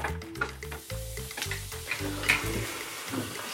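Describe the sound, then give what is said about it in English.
Baking soda and vinegar fizzing in a glass, a teaspoon of baking soda added to 1/4 cup of vinegar: a steady crackly hiss of tiny bubbles popping that holds for a few seconds, with a low, uneven humming tone underneath and no talking. “It's bubbling faster. What does it sound like? I feel like I can hear it through the computer even.”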